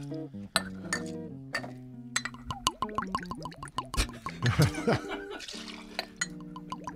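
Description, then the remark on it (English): Good Night Loving vodka glugs out of a frosted glass bottle in a run of hollow gurgles whose pitch slides and rises as it pours, with a few light glassy clinks mixed in. “The shape of this bottle is creating a unique sound when it pours.”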